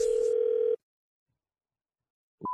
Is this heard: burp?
no